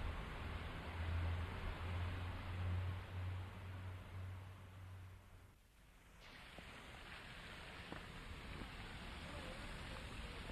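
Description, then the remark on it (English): Steady outdoor wash of water and wind by a canal in the evening, on a stretch from the fifth lock into the city with people sunbathing on the banks, with a low rush-hour traffic engine drone rumbling through the first half before a brief dip, then the broad ambient hiss carries on. “There's a lot of activity here, plenty of people sunbathing, rush hour traffic, and lots of people enjoying themselves on the banks of this old waterway.”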